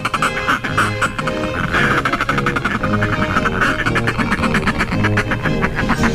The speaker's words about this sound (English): Yes, citrus scent, a feature of many seabirds, including today's featured feathered friend, the northern fulmar.